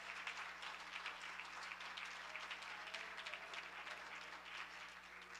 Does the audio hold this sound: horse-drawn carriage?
no